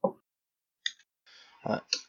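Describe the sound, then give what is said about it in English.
A small six-sided die (d6) clatters across a hard surface in a few sharp clicks and a brief rattle, fairly quiet, with a short voice-like sound at the start. “I have to roll a d6, figure out how long has it been since...”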